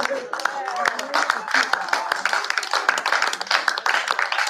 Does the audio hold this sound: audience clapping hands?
yes